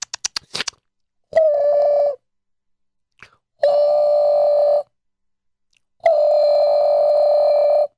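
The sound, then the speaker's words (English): A quick burst of button presses or dialing clicks, then three steady electronic ring tones, each about a second long, separated by silent gaps. Clear, with no voices. “Okay, let me call up.”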